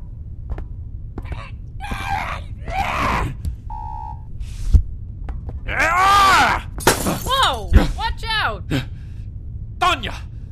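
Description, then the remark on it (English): Things get smashed in a kitchen: sharp crashes and bursts of shattering break out between loud yelling and groaning, with a couple of hard, abrupt impacts standing out among the noise. “Why are you yelling and smashing stuff?”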